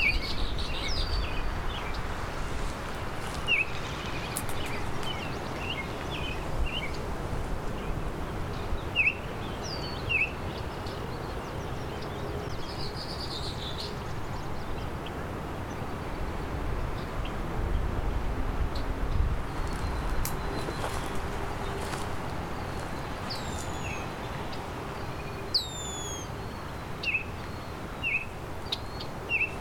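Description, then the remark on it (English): A Baltimore oriole sings clear, short whistled phrases at intervals over a steady rushing background hiss, with other scattered bird chirps, including red-winged blackbirds, joining in. “Red-winged blackbirds, and this Baltimore oriole still singing.”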